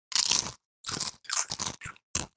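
Loud crunching of Doritos tortilla chips being chewed in a crunch-off contest, in about five or six sharp bursts with brief pauses between bites, bright and crackly with no talking.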